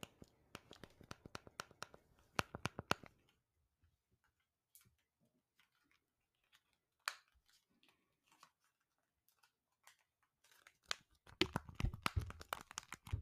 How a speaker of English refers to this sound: Next up, we have remote clicking.